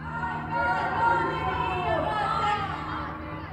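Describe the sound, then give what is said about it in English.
Many women's voices chant together from balconies and open windows at night in Iran's capital city, above security forces, in a sustained, overlapping crowd, their raised voices blending into a steady, high-pitched wall of sound with no pauses. “These chants spread between buildings and through Iran's capital city over the heads of the security forces below. Nearly all are women's voices.”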